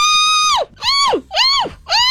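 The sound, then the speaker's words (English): Four elk bugles in quick succession, each a loud, high, squealing whistle that rises and then slides down, with rich harmonics and short gaps between the calls. “You will hear more elk bugling in one place than you ever have ever before.”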